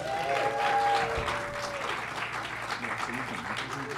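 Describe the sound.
An audience at the Greg Proops Film Club at the Los Feliz 3, American Cinematheque, in Hollywood applauds, a dense wash of clapping lasting about four seconds, louder at the start and then steady, with a brief high cheer or whistle early on and scattered voices mixed in.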